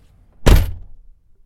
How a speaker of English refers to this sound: Let's do that again. Close the door.